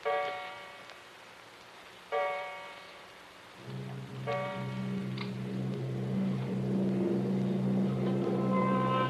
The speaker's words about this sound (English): Clock.